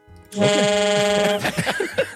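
A loud, harsh game show buzzer blares in one steady, buzzy tone for about a second, then cuts off as voices start talking.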